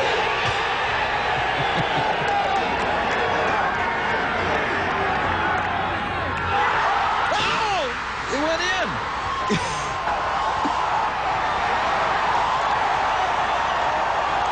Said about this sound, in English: Tiger Woods hit a hole-in-one at the Phoenix Open in 1997, and the crowd goes insane. You heard them go insane as soon as he hit the ball.